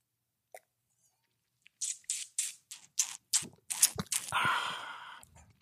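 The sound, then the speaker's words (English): Wet slurping from a glass as a newly released wine is tasted: a run of quick, sharp sips, then a longer airy draw as the wine is pulled through the lips, with no talking. “You want to take the first sippy sip?”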